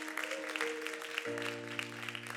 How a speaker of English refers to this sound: Clap your hands tonight before you are seated.